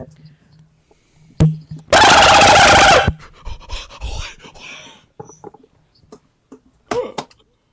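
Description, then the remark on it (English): A person imitates a dolphin with one loud, strained, squealing burst lasting about a second, followed by quieter talking and scattered short sounds. “I'm gonna have to start charging $5 for the goddamn dolphin noise.”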